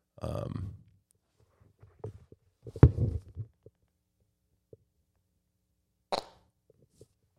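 A few short, low, muffled sputtering bursts pressed right up against a microphone, weak and broken up, like a failed attempt at a fart, followed later by a brief sharp knock.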